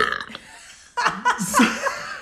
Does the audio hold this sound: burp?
yes